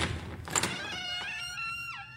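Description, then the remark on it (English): A low white wooden door is unlocked with a key and thrown open: a dull clunk of the latch, then a long, strained hinge creak that wavers and bends in pitch before trailing off. No one speaks. “after some fumbling, Ami threw open the low white door”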